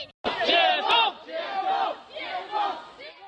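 Hundreds of protesters in the street shout together in loud, rhythmic bursts, many raised voices blending into the chanted slogan "Lift the blockades!" that rises and falls roughly every second.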